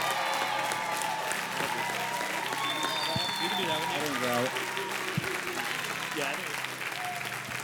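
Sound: loud audience applause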